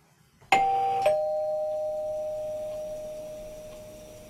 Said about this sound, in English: That was a long doorbell.